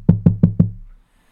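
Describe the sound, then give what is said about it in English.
Four quick, evenly spaced knocks on wood, fairly loud, each with a hollow, resonant thud, followed by a moment of quiet. No one speaks. “I don't regret it, but, and there's still so much time, knock on wood.”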